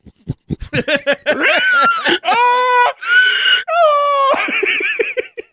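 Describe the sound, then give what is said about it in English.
A human voice imitates a pig, opening with a rapid run of short snorting grunts, then breaking into several long, wavering, high-pitched squeals, loud with no other sound. “The pig spits the truffles out and runs away.”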